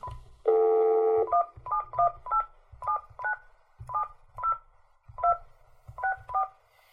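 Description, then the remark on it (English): A steady telephone dial tone cuts off into a quick run of short touch-tone keypad beeps as a phone number is dialed to call a guest, about a dozen dual-pitch presses in an uneven rhythm, clear with a low rumble underneath. “All right, that was the dialing and the ringing.”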